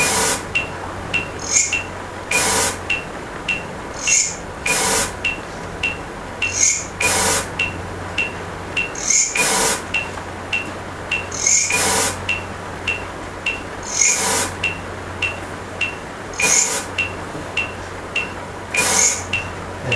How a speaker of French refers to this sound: Et la sauterelle, elle va réagir au bruit blanc.